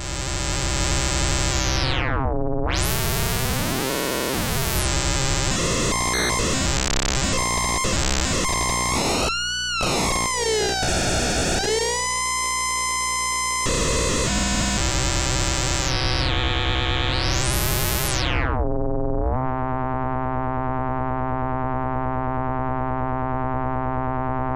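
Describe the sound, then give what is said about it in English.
A harsh, buzzy FM synthesizer tone: a VCO's sine wave, run through a VCA, frequency-modulates a wave-shaping module heard from its grind output with wave-shaping sliders turned up; gritty distortion sweeps and warps in pitch with bursts of noisy grind, then settles into a steady, harmonically rich drone. No voices. “So we're listening to the grind output so we can turn up some of these wave shaping sliders.”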